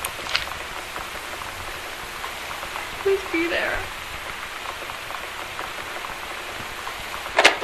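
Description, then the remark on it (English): Steady rain falls throughout with a constant hiss. Midway through, a person speaks briefly over it, and there are a couple of sharp taps near the start and end. “I think I know what this is because of the rain.”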